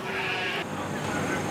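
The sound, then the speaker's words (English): A Brecknock Hill Cheviot ram's short, wavering bleat rings out at the start at a livestock show, then fades into steady background noise, with faint voices murmuring behind it. “I'm here with my Brecknock Hill Cheviot rams and I do it just for fun and meeting people and yeah, and I enjoy coming up the show to see different sheep and different stock.”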